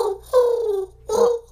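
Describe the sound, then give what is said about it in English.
A person imitates a turtle dove's cooing with their voice: two soft, breathy hoots, the first long and gently falling in pitch, followed by a shorter one after a brief pause. “Could it be a turtle dove? I love turtle doves.”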